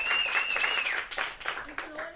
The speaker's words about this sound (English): We could clap a little hard on that. It's okay. This is audio, so people will hear it.